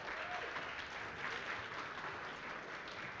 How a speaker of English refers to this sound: So we should just hand clap and high five right now.